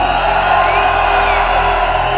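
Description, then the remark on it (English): A huge crowd of 10,000 people screams and roars in one loud, continuous wall of sound, voices blending into a dense steady wash with no break for the full two seconds. “10,000 people scream!”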